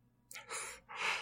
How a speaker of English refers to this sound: So we hope that you join us there whilst my co-hosts yawn like assholes. And I hope that you all enjoy, because I can assure you, I am not the one who's boring here.